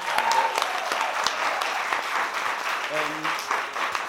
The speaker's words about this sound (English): So first of all, just another big round of applause.